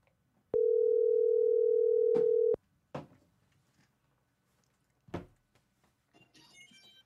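A phone ringing tone: one loud, steady two-second electronic hum, followed by a few sharp clicks and faint line noise as the call connects. No one speaks.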